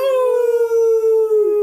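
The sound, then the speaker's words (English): A sustained, slightly falling howl held for over a second, a person imitating a coyote's cry, loud with no other talking. “Can we howl every time?”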